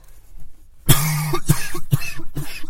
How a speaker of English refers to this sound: God, my cough won't go away